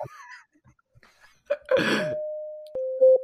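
A steady electronic chime rings out, like a cabin call tone, then strikes again for a second ding. A short burst like a cough or sneeze cuts across the first tone.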